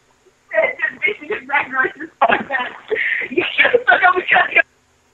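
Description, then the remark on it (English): A voice over a phone line on an Obama phone, thin and narrow-sounding, breaks up into choppy, garbled fragments with a brief dropout midway before cutting off abruptly. “She keeps cutting out.”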